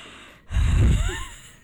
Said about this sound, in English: I'm sorry for breathing on your microphone with my nasty mouth